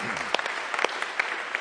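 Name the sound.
audience applauding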